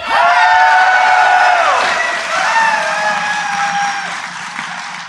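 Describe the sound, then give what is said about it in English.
A rowdy audience at DevLink in Nashville, Tennessee cheers and applauds loudly and steadily, with whoops and high shouts gliding up and down above the dense clapping throughout. “It's a rowdy crowd.”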